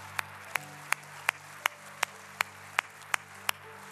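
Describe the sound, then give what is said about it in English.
An audience claps together as an expression of faith, in a steady, even rhythm, about eleven sharp claps in quick succession over a low background hum, with no talking. “You know that clap right there? That clap was almost a reflection of faith.”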